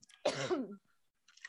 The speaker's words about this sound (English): Sorry, I'm going to cough for a second. You're good. Cough all you need to.